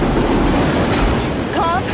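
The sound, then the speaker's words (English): A train roars past in a steady, loud rumble of noise during a film's chase scene in the rain, and a horn-like blare of rising tones cuts in near the end. “The train out of nowhere.”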